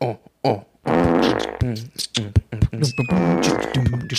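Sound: fart sound effect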